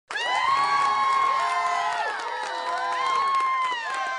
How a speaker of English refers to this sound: We should put in a audience clap. Yeah, a little laughter. Yeah, I'll clap for you. Well, thank you.